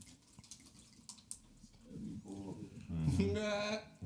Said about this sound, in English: It's a good pour right there. Good pour. Good pour.